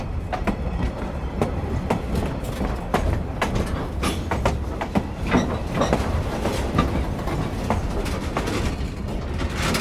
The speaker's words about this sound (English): And, I mean, the good thing about it was I got to record some trains.